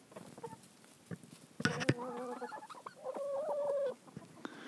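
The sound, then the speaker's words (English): The speaker's own chickens cluck and squawk in a busy chorus, with a burst of sharp calls followed by drawn-out, wavering clucks before quieter chatter resumes. “Here's some of my birds talking.”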